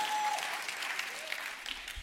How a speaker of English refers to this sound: I didn't want the applause, except I wanted you to ponder the words.